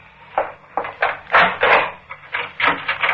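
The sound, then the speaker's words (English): A bolt rattles and slides back with a series of metallic clunks and scrapes, followed by a wooden door creaking open, all heard alone without any talking. “why did you bolt the door?”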